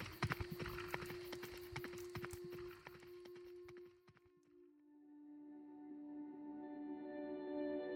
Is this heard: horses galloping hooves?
yes